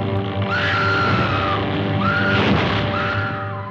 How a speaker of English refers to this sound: And the original Scream Queen, Faye Ray, from King Kong way back in 1933.